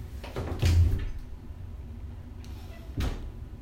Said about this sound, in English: because I'm literally about to check. I'm going to open the door again.